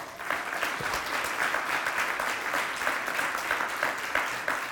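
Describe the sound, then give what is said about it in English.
A church audience gives God a hand clap together in a dense, steady burst of applause lasting several seconds, the many overlapping hand claps forming a bright, even wash of sound. “All right, give God a hand clap.”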